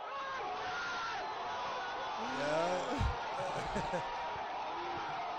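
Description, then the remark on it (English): A large crowd roars continuously at a boxing fight, a dense wash of cheering with a swell of whoops and shouts midway, plus a couple of low thuds around the peak. “They're all hyped.”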